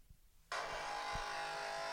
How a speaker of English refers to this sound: Is that what the coffee machine sounds like? Okay. and then this is someone's coffee machine.